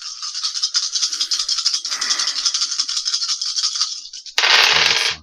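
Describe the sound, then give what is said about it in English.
A big handful of dice, rolled for fireball spell damage, rattles continuously for several seconds, a dense, bright clatter of plastic, ending in a sudden louder burst as they spill out. No one speaks. “Oh my god, that's a lot of dice. That was rolling. Very loud.”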